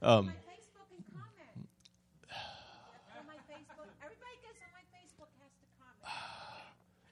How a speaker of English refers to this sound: That was a gasp.